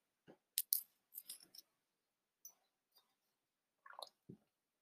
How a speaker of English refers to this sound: I'm gonna have a sip of water, guys.